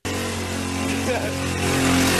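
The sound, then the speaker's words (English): A scooter engine drones steadily in a low, buzzing hum, holding one pitch before growing slightly louder toward the end, with a broad noisy wash over it throughout, in a video of a quick scooter accident. “This is on a scooter. Quick scooter accident.”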